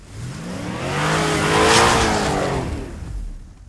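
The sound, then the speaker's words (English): A car engine revs hard and accelerates, roaring loudly as it sweeps past with a screech of tires, then trails away. No voices. “Yeah, let's head back to the car and then go to PQ. PQ. And skirt, skirt.”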